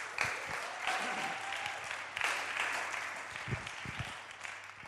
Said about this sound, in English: Let's give Vicky a round of applause.